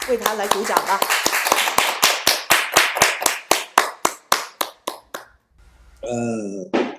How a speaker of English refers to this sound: Can you give the Lord a big hand clap for him?